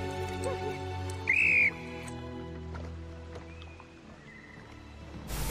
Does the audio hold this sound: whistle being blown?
yes